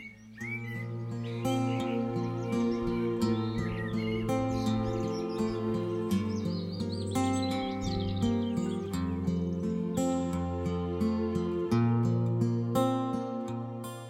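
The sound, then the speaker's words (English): Small birds chirp and trill in quick, busy bursts throughout, set against a steady, louder bed of sustained instrumental music. “On bright spring days, when the little birds are busy courting and building”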